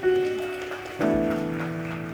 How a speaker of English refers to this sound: go ahead, you can clap, that's fine. Go ahead.